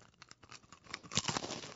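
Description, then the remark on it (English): Crunching of double-stacked Lunchables crackers with meat and cheese (two crackers, two pieces of meat, two pieces of cheese): a rapid series of dry, crackly bites and chews that grows louder toward the end, with no talking. “Oh, that was a nice little crunch, dude.”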